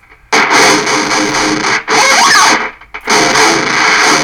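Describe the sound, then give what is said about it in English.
A loud, gritty guitar tone pushed through an overdrive effect, played in three sustained bursts separated by short gaps, thick with buzzing harmonics and no voices. “Let's try the overdrive.”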